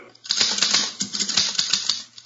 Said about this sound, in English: Here's a typewriter. Your secretary uses one. Perhaps your son or daughter write their school essays on a machine like this.